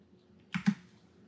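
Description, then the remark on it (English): Two quick, crisp key presses on a computer keyboard, close together, over a faint low background hum with no one speaking. “Are you typing Michael Bay wiki net worth right now?”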